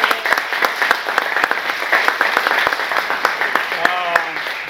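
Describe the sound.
An audience breaks into steady applause, many hands clapping in a dense, crackling wash that holds at a fairly even loudness, with a brief voice rising faintly above it near the end.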